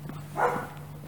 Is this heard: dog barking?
yes